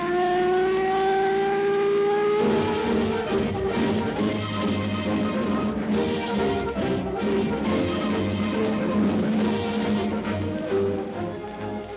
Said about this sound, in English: Two police officers cruising about their territory tonight in a radio patrol car have as their guest a resident getting first-hand information for the next broadcast